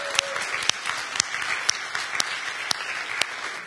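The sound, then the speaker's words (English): A church audience claps together for the dads on Father's Day in a steady, sustained round of applause, a dense wash of many hands at moderate volume, with no voices rising above it. “Can we give the dads a round of applause?”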